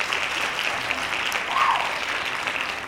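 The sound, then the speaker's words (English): A crowd clapping, a steady dense wash of many hands applauding together at moderate loudness, sustained for the whole stretch without pause. “Very eager for the hand claps. Hand claps.”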